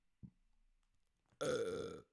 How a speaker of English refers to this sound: Sorry, I'm so sorry. That is disgusting. It just freaking like shot out of me like a fucking cannon. It's just like I just opened my mouth and I had the urge to burp.